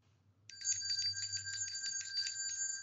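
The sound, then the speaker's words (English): A bell ringtone plays from a phone, a bright, rapidly trilling ring that starts after a brief pause and continues steadily to the end over a faint low hum. “I'll bring up a bell sound on my phone.”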